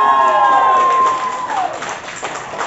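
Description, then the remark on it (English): A poetry slam audience cheers and applauds a poet after the scores are given, in a loud, continuous roar, with a high whoop or whistle at the start; the noise eases slightly partway through but keeps going. “Applaud the poet. Keep that applause going.”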